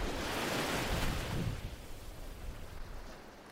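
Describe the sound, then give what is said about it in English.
A wave crashes loudly onto the shore in a broad roar, then recedes into a softer, hissing wash of foam and water. No voices are heard. “And if the waves come in and eats away at the toe, that goes back, and then the top dribbles down to match that.”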